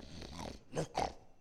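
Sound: man imitating a growl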